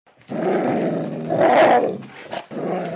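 dog growling

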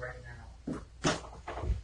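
knocking on wood

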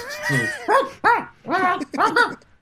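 dogs barking and whimpering

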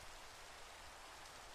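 rain falling

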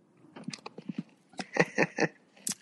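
sipping a drink

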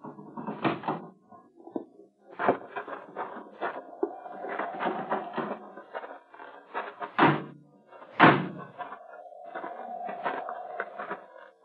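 door being opened

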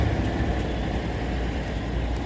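city street traffic

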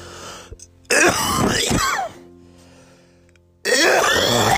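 cough

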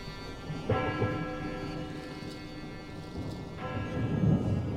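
town bell tolling

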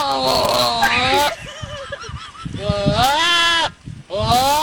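goat bleating

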